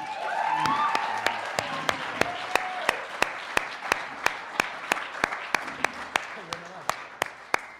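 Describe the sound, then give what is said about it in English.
An audience at CMU applauds to welcome a singer who teaches there, a dense wash of clapping that thins out while a steady series of sharp, evenly spaced claps keeps going to the end, with faint voices mixed in early on. “Yeah, I thought the applause would last a little longer, like all the time.”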